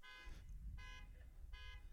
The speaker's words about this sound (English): And now a car alarm will go off in the background. Just to add to the flavor,